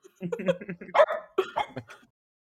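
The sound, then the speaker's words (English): A dog barks in a quick, uneven run of short barks and yips, loud and clear over about two seconds with no one talking. “We have a fun guest. It's my dog, Boss.”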